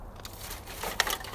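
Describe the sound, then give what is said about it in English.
Recyclables being loaded into a car trunk: soft crinkling and rustling, then two sharper plastic clatters, fairly quiet with no voices. “I'm putting the recyclables in the car, in the trunk.”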